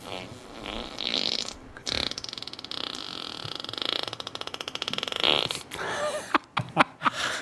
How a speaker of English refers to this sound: Just to confirm, that was one fart. That was one ass rip.